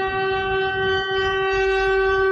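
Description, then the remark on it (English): A loud, blaring siren holds one steady, unwavering tone for the whole stretch, buzzy and rich in overtones, with a low rumbling noise beneath it and no voices. “Again with the annoying siren.”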